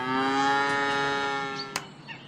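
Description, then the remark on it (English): A single long, loud cow moo with a steady droning pitch that slowly fades, followed by a brief sharp click near the end, as cows are let out of a barn at the start of the day. “Let's get those cows out of the barn.”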